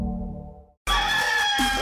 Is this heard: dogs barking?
no